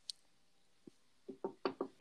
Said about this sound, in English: You hear the knock on wood?